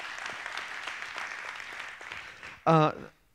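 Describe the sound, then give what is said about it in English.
An audience claps together in a steady, dense wash of applause for a few seconds, ending with a loud, brief vocal cheer that cuts through before things quiet down. “Y'all give the Lord a hand clap for that.”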